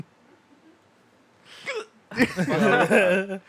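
A single sharp hiccup pops out of near silence, close to the listener, and is quickly followed by a louder, longer burst of voiced vocal noise.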